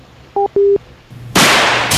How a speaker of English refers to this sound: Was that you with the Microsofts? The microwave sound effects?